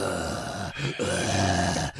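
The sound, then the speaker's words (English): Heavy, strained breathing of a vagrant with grunting, groaning breaths, loud, woven into a dense, droning film score, with brief catches between breaths. “and it has, instead of some dumb piano going da-da-da-da, it includes the breathing sounds of the vagrant.”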